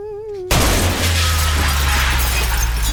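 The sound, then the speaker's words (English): After a brief tonal hum, a large glass store window shatters with a sudden, loud crash, followed by a sustained spray of breaking glass and debris over a low rumble, as Bruce Willis crashes through the window of an Advance Auto Parts store in an advertisement for Die Hard batteries. “And Bruce Willis just comes crashing through the window of the store.”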